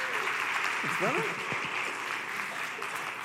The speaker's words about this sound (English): Anyway, hey, would you guys give a warm welcome, a big cheer, big clap to my friend